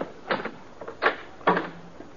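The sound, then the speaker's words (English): The door of a rooming house being opened to a visitor: a few sharp clunks of the latch and handle, followed by a brief, low creak as it swings. No one speaks. “While you open the door, you ain't got a thing to worry about.”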